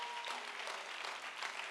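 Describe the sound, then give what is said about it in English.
A short stretch of audience applause: many hands clapping at once in a dense, even crackle that holds steady for under two seconds, fairly soft, with no voices over it. “You didn't clap for that.”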